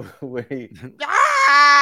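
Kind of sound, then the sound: human body sound, man screaming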